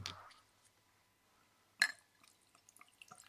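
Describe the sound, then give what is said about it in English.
A sharp glass clink rings out, followed by soft, intermittent gurgles and trickles of Jack Daniels being poured from a glass bottle, quiet, with no talking. “Glass bottle.”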